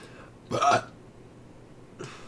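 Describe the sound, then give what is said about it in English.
A single short, abrupt burp over a quiet background, with a much fainter throaty sound about a second and a half later. “Sorry, I'm burped again.”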